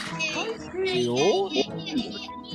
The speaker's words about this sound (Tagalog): Sino yun? Merong bata.